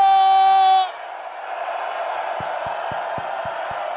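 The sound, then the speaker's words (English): A brief steady horn-like tone cuts off into a loud, sustained roar of a cheering crowd as a band's performers are brought on stage for an encore, with a run of evenly spaced low thumps beneath it near the end. “I turned the crowd up then.”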